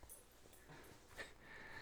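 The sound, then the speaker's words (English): A dog being petted sniffs in short, soft bursts, with a faint, thin whimper rising near the end. The sound is quiet, with no talking. “Hey, he's got a dog, and I'm petting it.”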